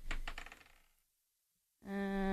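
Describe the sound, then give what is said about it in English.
Dice are rolled to decide the winner of a game, clattering and tumbling in a burst of quick clicks that fade out over about a second; after a brief silence, a loud, steady electronic tone begins. “So let's go for a low dice roll for the win today.”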